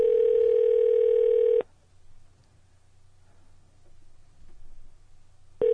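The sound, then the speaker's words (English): A telephone ringback tone on a call to a Department of Transportation maintenance yard, before it goes to voicemail: a loud, steady buzzing ring lasting about a second and a half, then a long quiet gap with faint low hum before the next ring begins. “Okay, so we got the voicemail there.”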